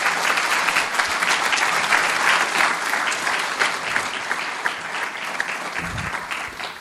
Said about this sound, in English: Give these two organizations and Steve Newhouse a round of applause, please.